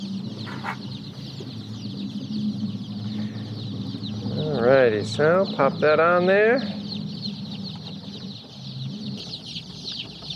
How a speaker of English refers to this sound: Oh, can you hear them all? Listen to them. So I have 9 boxes of baby chicks here in the truck, and with the window closed, I just feel like I'm in this incredible aviary sense-around thing.